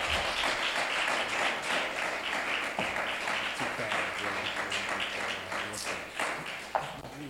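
Steady, dense applause from a large crowd, loud and sustained for several seconds, with a few sharper claps and faint voices mixed in, as the resident imam is brought up to deliver the keynote, Allah Loves the Grateful.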